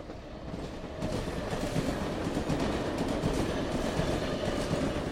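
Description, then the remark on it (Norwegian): A train rumbles steadily along the rails at a Bane Nor railway work site where damaged track is repaired, a loud, continuous clatter of wheels and carriages with dense low-end roar and faint clicking, no voices. “Dette har vært lyden av arbeidsplassen”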